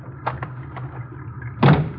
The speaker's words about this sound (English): I'll open the garage doors.